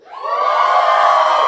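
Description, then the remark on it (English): A church audience erupts in loud shouting and cheering in response to a reading of Psalm 100's call to shout, the roar swelling quickly within a fraction of a second and then holding steady as a dense wall of raised voices. “The Bible says, shout.”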